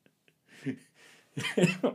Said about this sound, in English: Oh, see, I already have the smoker's cough.